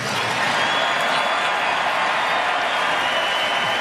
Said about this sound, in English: And then they all started cheering.